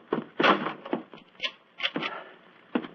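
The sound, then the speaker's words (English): A door swings shut with a solid thunk, followed by a quick series of clicks and rattles as it is latched and locked, moderately loud. “Follow me. Lock the door behind you.”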